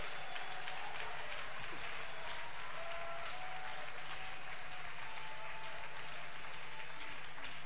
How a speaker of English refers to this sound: Applaudissez pour Jésus. Applaudissez pour Jésus.